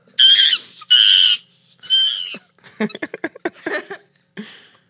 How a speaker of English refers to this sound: So at the beginning of this video, it says, warning, 10 hours of monkey sounds. You know what you're getting into.